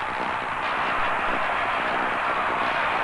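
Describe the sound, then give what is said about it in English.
A baseball crowd cheers and applauds after Stan Musial's ground hit to right field puts the Cardinals ahead 1-0 in the fourth inning. The steady, dense roar holds at an even level for the full three seconds, with no single voice standing out. “He might be waiting for this applause on the hip to die down.”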